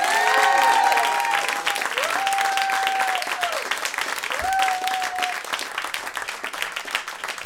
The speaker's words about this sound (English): Now keep that applause going. If you welcome our panellists to the stage, Matt Richardson, Ellie Taylor and Stephen Grant.